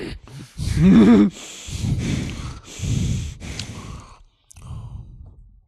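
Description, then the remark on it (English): A person imitates heavy, labored breathing with a series of loud, raspy sighs and snorting exhales, about five in a row, with brief pauses between. “You know how you could hear his breathing?”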